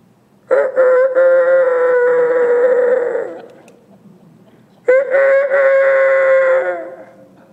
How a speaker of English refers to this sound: Verse 27, it says, and immediately the rooster crew, or he crowed.